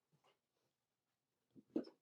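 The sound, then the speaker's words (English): A dog makes a few short noises: faint, brief sounds at first, then a louder, sharper burst near the end, with quiet gaps between and no one talking. “My heavens, my dog is just like on something today.”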